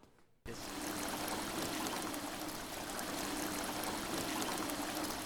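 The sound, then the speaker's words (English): After a brief quiet moment, a steady rush of falling water starts abruptly and continues, a broad splashing roar from an indoor waterfall inside the Royal Danish Library in Aarhus, constant with no voices. “A waterfall inside a library.”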